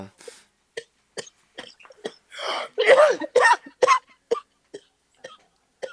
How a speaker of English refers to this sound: I'll let you get your coughs off.